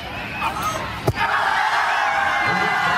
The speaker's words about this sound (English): And the crowd goes wild.